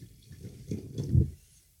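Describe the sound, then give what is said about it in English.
Cinsault wine pours into a glass, a brief liquid gurgle that swells and grows fuller toward the end before tapering off, with no talking. “And I'm going to go ahead and just pour this because that's Cinsault, and this is, this is mainly Cinsault.”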